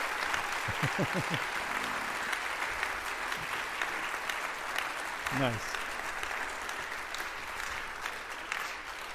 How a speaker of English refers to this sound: Now, they're clapping. They have no idea. This is a huge responsibility.